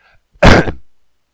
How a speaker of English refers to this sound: And I coughed in there too. I should edit that crap out, but I don't because it just makes it more real.